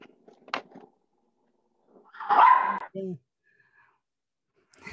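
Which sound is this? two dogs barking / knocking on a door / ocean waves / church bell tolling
two dogs barking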